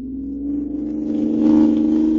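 A car engine drones steadily on a desert highway, then revs harder and swells louder about halfway through as the vehicle accelerates away from a car behind it, with a low rumble underneath and no voices.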